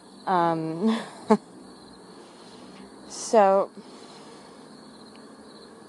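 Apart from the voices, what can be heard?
crickets chirping outdoors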